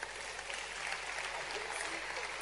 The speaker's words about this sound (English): Wow, what a husband. Clap for that husband.